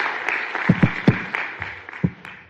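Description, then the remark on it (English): An audience applauds in a steady, dense patter of many hands clapping, with a few sharper, louder claps standing out. No one speaks over it. “And I believe we can give him a round of applause for that.”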